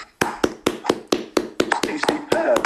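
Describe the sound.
A short round of applause for a victory: about a dozen sharp, steady hand claps at an even, brisk rhythm, with a voice faintly audible beneath the last few.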